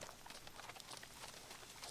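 Faint, steady clip-clop of a horse's hooves walking at an even pace, the soft knocks coming quickly one after another with no voices.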